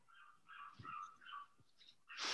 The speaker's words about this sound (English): You hear that dog yipping outside? I was just going to say. Yeah, I did hear that. Sounds like a small dog with a very high pitch. Does sound like a small dog. Yipping.